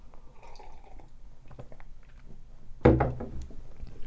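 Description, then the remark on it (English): Someone sips tea: faint wet clicks and small liquid sounds, then a louder, noisy slurp near the end. No one speaks. “This is, hold on, sip of tea. Those of you with misophonia, step away for a second.”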